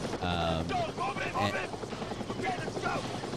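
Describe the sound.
Loud, steady thumping drone of military helicopters flying away from a jungle clearing, with rising and falling tonal sweeps and indistinct voices mixed into the roar.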